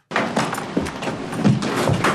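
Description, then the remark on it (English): The front door of a home opens as a woman arrives home, with a handful of clunks and rattles from the latch and frame over a steady background hiss, and no one speaking. “here is Shiv, played by Roisin Gallagher, arriving in the door of home”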